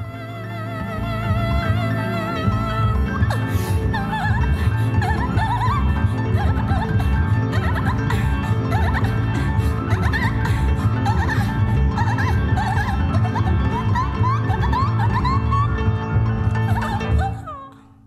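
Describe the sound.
A singer lets out high, squeaky, warbling chirps that imitate a dolphin near the end of the first song on an album, repeated over loud, dense band music that plays steadily throughout before cutting off at the end.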